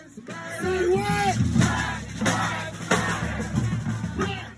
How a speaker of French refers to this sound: Derrière les masques, les manifestants entonnent les slogans, accompagnés par une fanfare, deux mecs qui rappent et un sound system puissant.